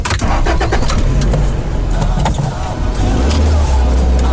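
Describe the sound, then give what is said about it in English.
A Skoda Kodiaq Sportline SUV's engine hums steadily as it drives down a very straight road with a river alongside, with low rumbling road noise and a slight rise in pitch as the vehicle moves along, loud and continuous throughout. “off in his car earlier on, taking a trip”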